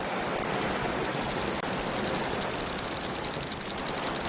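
A piercing, very high-pitched anti-loitering tone of about 20,000 hertz, from devices meant to keep young people from congregating, holds steady over a wash of hiss, flickering in quick, rapid chirping pulses, with no talking.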